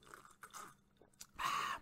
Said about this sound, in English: And baby, excuse me. I'm going to have to take a sip of extra spicy.